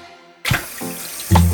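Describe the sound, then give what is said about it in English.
A tap opens abruptly and fresh water runs steadily into a kettle, the pitch shifting as it fills, fairly loud with no voices. “Drawing the fresh water.”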